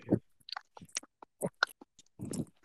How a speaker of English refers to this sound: ASMR noises. No, I'm doing this. Slurping down.